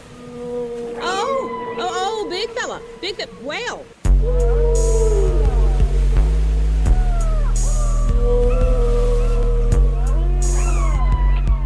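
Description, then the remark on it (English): Whale calls: a series of rising and falling moans and squeals, loud and close, joined partway through by a deep, steady low drone that continues under the repeating calls. “Big fella, whale.”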